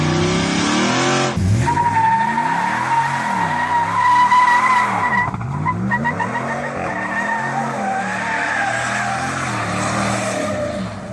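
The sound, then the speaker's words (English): A car roars, its engine pitch rising and falling, while tires screech in a long, loud skid that stays steady for several seconds with no one speaking. “DWS's car went by. And then we heard this.”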